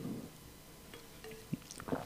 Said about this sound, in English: I just popped my water bottle in case y'all just was wondering what the noise was. I'm finna take a swig of the water.